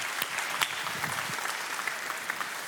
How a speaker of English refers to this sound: Come on, let's clap to Jesus for a few moments.